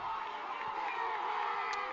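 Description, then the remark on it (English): A football crowd roars in reaction after Ella Ballstedt is tripped in the 18-yard box late in the match and play goes on, a dense, sustained wash of shouting and cheering voices that holds steady and loud for the whole two seconds, with no single voice standing out. “You can hear the crowd there.”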